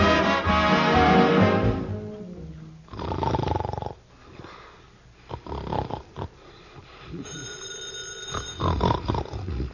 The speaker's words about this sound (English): the telephone is ringing. Who set the clock for this time of night? That isn't the clock. That's the telephone. Go answer it.